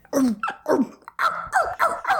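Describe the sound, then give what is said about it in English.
A dog, Carney, asked to say "oh wow", gives a run of drawn-out, howling vocalizations on command, about five in a row with brief pauses between them, each rising and bending in pitch almost like an attempt at speech. “What a good dog.”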